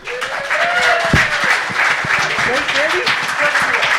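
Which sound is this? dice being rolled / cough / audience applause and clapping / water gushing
audience applause and clapping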